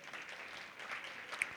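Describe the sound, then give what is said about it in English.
A church audience breaks into steady applause, a dense wash of many hands clapping at an even level throughout, with one slightly sharper clap near the end and no voices. “You can clap for that.”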